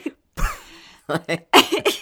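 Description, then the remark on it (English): A person with a cold lets out one long rasping cough followed by a quick run of harsh, choppy coughs, fairly loud, with no talking. “I start like an old person where it's always they start laughing and it ends with coughing.”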